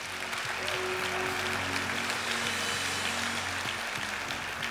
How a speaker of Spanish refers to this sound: Dar un aplauso a Cristo.